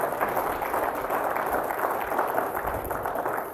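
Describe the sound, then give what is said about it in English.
Steady applause from an audience at a breakfast at Pittsford Community Church, a round of applause for the food, a dense crackle of many hands clapping at an even level throughout, with no voices standing out above it. “And I think everybody should give a round of applause for food.”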